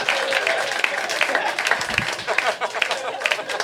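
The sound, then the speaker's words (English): A comedy audience breaks into steady applause after a tombstone joke by comedian Kyle Kinane, dense overlapping claps filling the whole stretch at a fairly loud, even level, with a brief low thump partway through. “I think you were quick to applaud at that.”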